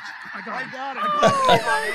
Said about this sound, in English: What are those, snow geese? Yeah, those are definitely snow geese.